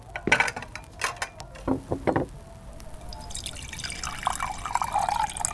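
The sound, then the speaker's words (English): A few sharp clinks of glassware and tableware, followed by wine pouring steadily into a glass, the gurgle brightening as the glass fills. “You call that a wine pour? A little more, if you please.”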